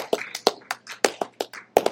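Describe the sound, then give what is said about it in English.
A burst of scattered hand claps from a group at a worship service at Faith Conference Worship Center, sharp and irregular rather than in unison, about a dozen distinct smacks over two seconds with no voices. “Can we just give God a clap, please?”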